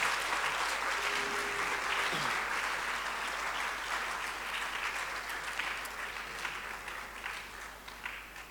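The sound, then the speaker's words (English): An audience gives a clap of honour to Jesus, clapping steadily in a dense, sustained wash of applause that slowly thins toward the end, with a brief tonal note and a faint voice near the start. “Can you give a mighty clap of honor to Jesus?”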